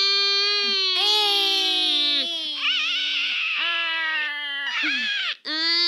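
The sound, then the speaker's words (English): A shrill, ear-piercing scream from an opened golden egg wails on and on in harsh, warbling bursts, loud and strained with a wavering pitch, with no talking over it. “It's a scream. It's a horrible, ear-piercing scream.”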